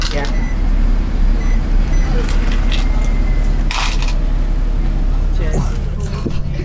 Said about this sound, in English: We're on the 140 Magic Bus to Didsbury.